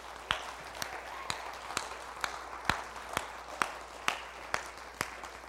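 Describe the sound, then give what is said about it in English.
Audience applause for the Hillside Community Care Team in a steady, rhythmic pattern: about a dozen sharp, evenly spaced claps at a moderate level over a soft background hiss, with no talking. “Let's give them a hand this morning.”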